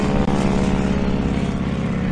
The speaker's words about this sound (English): How about that? Chopper going by, delivering lunch.